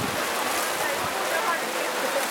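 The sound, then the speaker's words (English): Heavy rain pours down in a dense, unbroken hiss, steady and loud from start to finish, a drenching downpour with no pauses, at a church gathering held under a tent at an Adventist junior college in Belize. “The weather here can change quickly, and when it rains here, it pours.”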